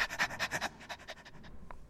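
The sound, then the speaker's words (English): A person imitates a dog panting with quick, rhythmic breathy huffs, loud at first and then fading into softer, faster pants that trail off near the end. “Yeah, that always sounds a bit gross, I mean, because it leads into the actual dog doing it, which isn't, yeah, by the way, a dog.”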